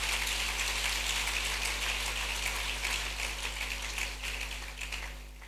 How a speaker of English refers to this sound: Are you clapping or doing something like clapping?